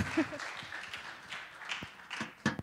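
An audience applauds to welcome guests who will sing: a dense, steady patter of many hands clapping at once, fairly soft overall with a few sharper claps standing out near the end.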